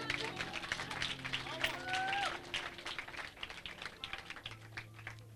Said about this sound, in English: If you want to clap, clap for Jesus.